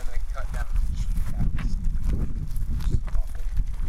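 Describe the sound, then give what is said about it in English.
Steady footsteps of people walking thud up a ramp, each step a dull knock in a quick walking rhythm over a low rumbling background. “We're walking up the ramp now.”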